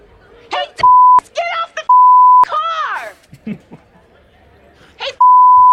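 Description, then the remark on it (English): Three loud, steady censor bleeps at a single mid-high pitch cut sharply into a man's shouting at someone to get off a car in a parking lot, each lasting around half a second, with the last one running to the end. “I pulled in the bleeps too hot. But anyway, yeah, it's tinnitus beeps.”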